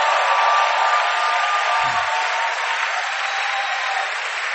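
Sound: audience clapping applause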